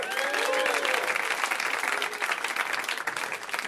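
A comedy show crowd applauds itself steadily, dense overlapping claps forming a loud, sustained wash of noise with faint cheers or whoops rising above it.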